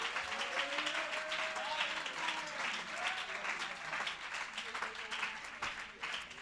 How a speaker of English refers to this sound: Come on, if you want the will of God to be done in your life, somebody clap your hands and lift your voice right now.